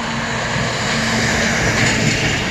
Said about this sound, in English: Here comes the truck.